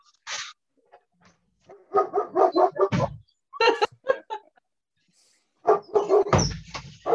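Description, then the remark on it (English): A dog named Jim barks repeatedly in short, uneven bursts, some yappy and high, with brief pauses between clusters of barks and no talking. “now Jim's barking.”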